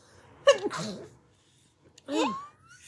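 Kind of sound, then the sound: human body sound, sneeze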